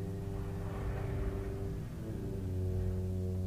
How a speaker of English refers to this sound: Okay, please tell me that was a fucking car that just went by. Please tell me y'all heard that. Kind of sounded like a demon rumbling.